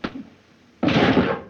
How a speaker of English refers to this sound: So Mike punches Tom in that scene, and then, of course, Tom leaves angry.